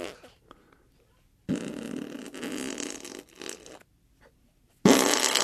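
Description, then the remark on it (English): Two bursts of wet, flapping armpit farts made by a grown man, a long sputtering one lasting a couple of seconds followed after a pause by another loud blast. “It's a grown man doing armpit farts.”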